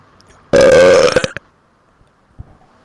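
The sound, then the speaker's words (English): A single loud, long computer belch sound effect, rough and gurgly, lasting almost a second, followed by a faint short thump and near-silence. “It's called the Computer Belch Virus.”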